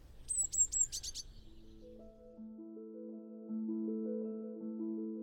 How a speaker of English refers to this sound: And again, it's a simple two-note phrase, and people say it says, teacher, teacher, teacher, teacher. Here we go. There we go. So a simple two-note phrase, teacher, teacher, teacher, is the great tit.